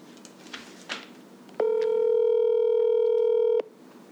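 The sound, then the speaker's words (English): A telephone dial tone sounds once while calling a friend, a steady, buzzy hum held for about two seconds, loud, after a moment of faint handling noise. No one speaks. “I'm thinking we should phone a friend.”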